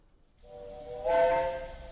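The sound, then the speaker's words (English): A steam locomotive getting up steam sounds its whistle, a sustained, multi-toned blast that swells louder midway, backed by a steady hiss of escaping steam, with no voices present. “They're getting up steam on the engine.”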